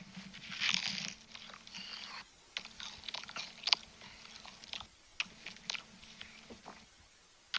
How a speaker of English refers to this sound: Just munching.